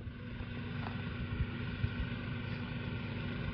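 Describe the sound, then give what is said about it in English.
A Workmaster 75 compact tractor engine idles steadily while warming up, a continuous low rumbling drone with a faint mechanical rattle and no change in pace, heard alone without voices. “Workmaster 75 warming up.”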